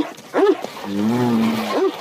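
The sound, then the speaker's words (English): A dog wearing roller skates yelps and whines frantically: a sharp yelp, a long wavering whine, then another yelp, loud, with no one talking. “you've got a caller on line 3 who says his dog is hysterical”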